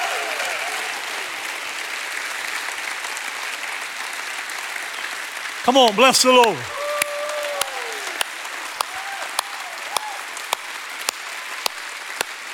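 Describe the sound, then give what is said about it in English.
A crowd claps steadily in praise of God after a prayer, in a dense, sustained wash of applause, then a voice shouts over it and the clapping thins to scattered, sharp individual claps. “Give God a great hand clap of praise.”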